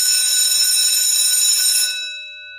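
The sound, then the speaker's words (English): An electric school bell rings loudly and continuously for about two seconds, a harsh metallic clatter with sustained ringing tones, then cuts off and its resonance fades away. “Oh, Saved by the Bell.”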